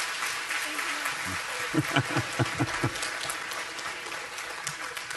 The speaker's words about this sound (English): Let's give our guests a round of applause as they return to their seats.